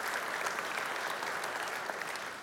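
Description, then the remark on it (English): An audience gives the Lord a round of applause during Sunday morning worship, clapping together in steady, dense applause at an even volume throughout, with no voices standing out above it. “Let's give the Lord a big round of applause today.”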